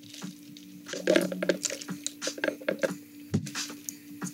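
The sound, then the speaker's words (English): A drink is sipped: soft wet slurps and small clicks of the lips and cup, a brief swallow, all fairly quiet over a steady low electrical hum, with no talking. “Those on YouTube, I just took a sip because I was waiting on somebody to answer the question.”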